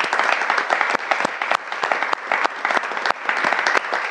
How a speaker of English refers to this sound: So, let's clap it up for him.